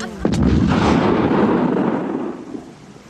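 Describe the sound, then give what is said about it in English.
A single loud shotgun blast: a sharp, booming crack followed by a long, rumbling roar that slowly fades over a few seconds, with no voices. “For being flashed with a shotgun and shooting a dummy.”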